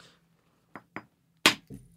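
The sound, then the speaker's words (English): Stone striking stone as a man flintknaps a tool, hitting a rock laid down: two light taps, then one loud, sharp crack followed by a softer knock that leaves a faint high ring. No one speaks. “An interesting thing about this, if you're trying to visualize this at home, is when he lays the rock down and hits it, the piece he's blowing off isn't on top.”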